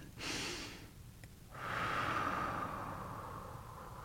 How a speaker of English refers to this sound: And breathing